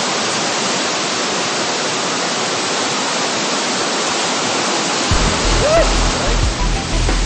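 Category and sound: nature, rushing creek water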